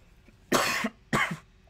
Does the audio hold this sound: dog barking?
no